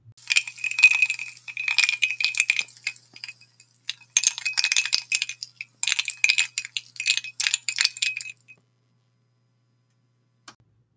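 Ice cubes clink and rattle into a glass for a drink refill in several busy bursts of bright, hard clicks, with short pauses between handfuls, then quiet except for one faint click near the end.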